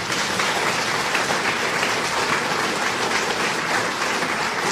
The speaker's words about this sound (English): Let's give everybody at Balance, please, an applause, folks.